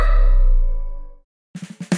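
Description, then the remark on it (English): A sustained harmonic tone fades out and a brief silence follows. Then a person imitates a dog with a quick run of about five short, punchy barks, loud. “I cannot believe that you were just dog-cussing Matt.”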